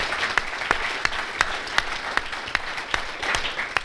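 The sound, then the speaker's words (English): A room full of people applauds the speaker's wife steadily, a dense wash of clapping with a few sharper, louder claps popping out at regular intervals, sustained throughout with no talking. “and most importantly, I have an amazing wife. Let's give her a round of applause.”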